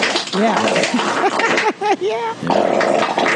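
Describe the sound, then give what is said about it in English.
A voice imitates a fart with a string of wobbly, buzzing blurts over a few seconds, loud, with noisy background chatter around it. “I wish you farted like that in front of him.”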